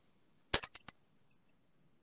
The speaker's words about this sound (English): I hear you researching. furiously typing. You're researching your repo link.